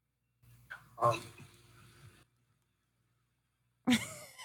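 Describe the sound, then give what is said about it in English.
Two deep, heavy breaths, each a loud rushing exhale with a brief quiet gap between them, over a faint low hum and no speech: a person on a Chat Roulette video chat taking deep breaths between words. “Yeah, you're like taking deep breaths in between your words.”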